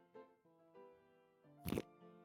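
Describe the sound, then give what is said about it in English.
Fart putty squelching: a run of low, droning, fart-like squeaks that rise and fall, broken by a louder, wet, sputtering burst near the end. No one speaks. “Welcome to the podcast where we're just doing fart putty sounds now.”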